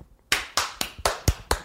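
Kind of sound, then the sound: crowd, applause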